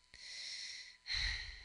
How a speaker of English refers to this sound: I mean, that's not a real cough. No, that was a stage cough.